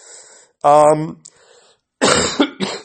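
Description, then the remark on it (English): A person who is a little sick coughs: a throaty, voiced hack followed a moment later by two quick, harsh coughs, loud and dry with brief quiet gaps between them. “You might have heard me cough right now, and that's because I'm actually a little bit sick as well.”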